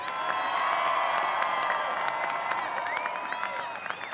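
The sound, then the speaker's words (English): A large crowd cheers and shouts loudly and continuously in response to a speaker's pledge to defend the dignity of work and the sanctity of life, with high whoops and scattered claps rising out of a dense, steady roar of voices. “Way more cheers for that than treating people of all colors equally.”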